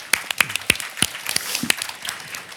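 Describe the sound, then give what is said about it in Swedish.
An audience applauds, a patter of many overlapping hand claps with sharp individual slaps standing out, steady at moderate loudness for a couple of seconds with no voices. “Okej, tack så mycket. En applåd.”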